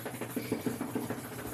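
A dog under a table makes a quick run of low, snuffling grunts, about five short bursts in a steady rhythm, moderately loud with no talking over them.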